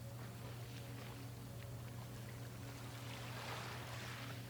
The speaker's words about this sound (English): The sound of the surf. And the gentle ocean breeze.